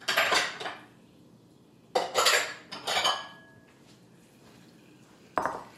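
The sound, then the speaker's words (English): Hot simple syrup being poured from a pot into a bowl to cool it down quicker, heard as a few metallic clanks and scrapes of pot against bowl in separate bursts, with quiet pauses between and no talking. “And now we need to pour this into a bowl just to cool it down quicker.”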